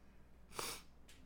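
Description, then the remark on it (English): A wet, airy snort through a runny nose, followed a moment later by a shorter, sharper sniffle. Both are fairly quiet, with no talking. “I need to blow my nose.”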